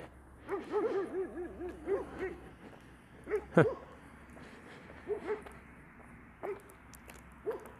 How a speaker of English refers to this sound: Oh, we got a couple dogs there. Good morning, guys. Couple dogs in the farm. Go round up them sheep.